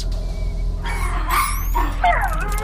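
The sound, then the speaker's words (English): A few high, whiny yips and whimpers from a Dayglo alien puppy that hatched from an egg, inside a spacecraft, rising and falling in pitch over a steady low hum, fairly clear. “Can anyone speak Dayglo alien egg puppy-ish? I don't know what he wants.”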